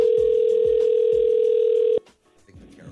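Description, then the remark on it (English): A phone line ringing: one steady, mid-pitched electronic tone holds loudly for about two seconds, then cuts off abruptly, leaving faint low background noise. “All right, well, call her up right now. We'll wait on the line.”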